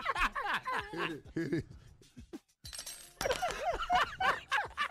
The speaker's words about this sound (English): Just drop your damn silverware. You're mad. That means you're really mad.